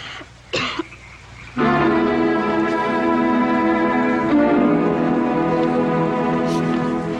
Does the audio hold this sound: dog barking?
no